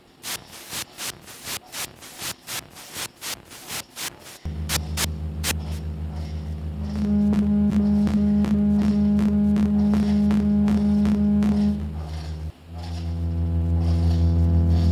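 A lawnmower engine in Austin, Texas, in mid-May sputters with rapid pulsing bursts, then settles into a loud, steady droning hum with a throbbing low whine, briefly dipping before running on.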